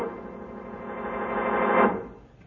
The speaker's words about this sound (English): Because I wanted you to listen to that signal. If I'm not mistaken, it's a call for help.